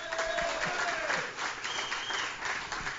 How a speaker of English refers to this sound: Let's everybody give a round of applause